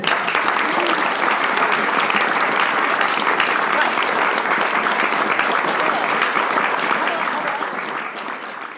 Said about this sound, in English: in a moment after you give a big round of applause.